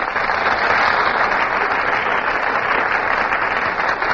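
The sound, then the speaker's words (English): A studio audience applauds steadily as actors make their entrances on a theater stage, a dense wash of many hands clapping at once, loud and sustained without a break for several seconds, with no voices over it. “You just can't help applauding when Fred McMurray and Carol Lombard make their entrances on the Gulf Theater stage”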